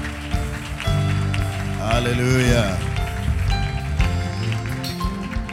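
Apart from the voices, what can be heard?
audience clapping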